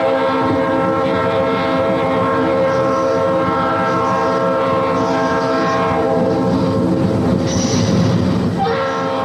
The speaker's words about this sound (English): They even do advertisements about trains. What is this? I don't know. It's just a train ride. It's just a train ride.